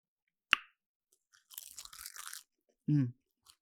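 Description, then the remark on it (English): Someone crunches on a crisp seaweed snack: one sharp snap, then a dry, crackly second of chewing, followed by a brief low hum and a faint final click. “Seaweed is very slept on. Sound off in the comments if you're a seaweed princess. So flavorful. It's like the ocean's chips.”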